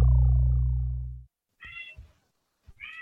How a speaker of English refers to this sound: I was going to say, I hear a kitty. Yeah, we got a couple of those around here.